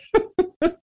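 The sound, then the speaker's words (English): A dog barks three times in quick succession in the background, sharp and fairly loud, with short gaps between each bark and no talking. “That's my dog. If you hear it in the background, can't do anything about it.”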